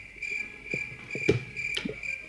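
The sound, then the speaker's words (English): A crickets sound effect: crickets chirp in a steady, shrill high-pitched trill throughout, broken by a few soft, low croaking pulses beneath. There is no talking. “Crickets.”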